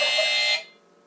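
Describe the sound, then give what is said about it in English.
A single harsh electronic quiz buzzer, used in a quiz round for question five, blares for about half a second, a loud, raspy, steady tone that cuts off abruptly and leaves quiet behind. “Yeah, fingers on buzzers for question five.”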